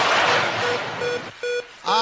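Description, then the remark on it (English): A series of short, high electronic beeps repeats at a steady rhythm, rising out of a noisy wash and then ringing out more clearly on their own. “Well, listen to some of those beeps on there. It's going beep, beep, beep, beep, beep, beep.”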